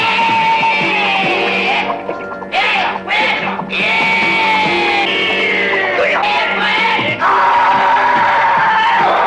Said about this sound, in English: Dude, the ADR screams in this are fucking hilarious. They're that nuts. One Chuck Norris guy is like, yeah, yeah, yeah! And it's, like, screaming, though. Yeah! Like, it's like, these guys are, like, gut-busting screeches.